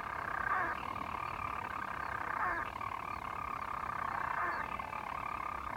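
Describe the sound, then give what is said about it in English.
A seabird's continuous, rough purring from inside its burrow, a buzzy engine-like whirr that swells and eases roughly every two seconds, heard on its own with no talking. “It would land, and then I didn't want to scare it, so I didn't open my zipper or anything, but it would scurry into its burrow, and then it would make this little purring sound, like an engine that's trying to take off or something.”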